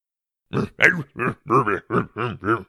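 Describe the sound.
A man grunts in a rapid string of about seven short, guttural bursts, imitating a caveman's wordless speech, close and fairly loud with brief pauses between each grunt.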